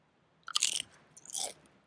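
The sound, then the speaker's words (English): Close-up ASMR eating sounds: two crisp, crunchy bites or chews, the first sharper and the second softer, with a brief pause between them. No one speaks. “Should we do ASMR? It's good. Like, not like eat really close to oh, people really like ASMR.”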